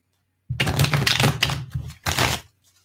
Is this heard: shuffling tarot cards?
yes